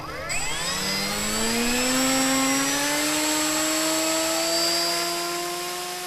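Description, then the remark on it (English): Drone propellers spin up with a loud, steady buzzing whine, their layered tones rising gradually in pitch over several seconds, with no talking. “I'll have you stand up right over here so you're not in the plane of propeller in case something happens.”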